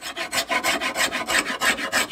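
Steady, rhythmic rasping of a hand tool scraping wood, with about nine even strokes in quick succession, each a bright, gritty scrape, and no voices.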